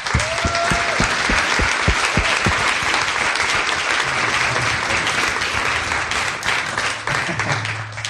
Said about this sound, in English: So let's give a round of applause to a mighty man of God